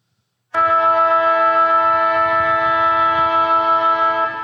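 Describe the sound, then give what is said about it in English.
A loud end-of-game siren at a sports ground blares in abruptly and holds one steady, buzzing, horn-like tone for about four seconds without stopping, with no voices. “Let's get a siren going.”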